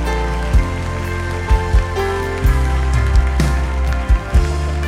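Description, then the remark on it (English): The Calvary audience claps continuously, a dense, even patter of many hands over sustained musical tones, with occasional deep thumps punctuating the steady applause. “I know we're clapping.”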